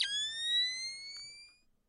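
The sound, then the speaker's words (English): Night vision goggles switching on in the video game Splinter Cell as Sam Fisher puts them on: a sharp click into a bright, high electronic whine that rises slightly in pitch, holds for about a second and a half, then fades out. “What is Sam Fisher putting on his night vision goggles?”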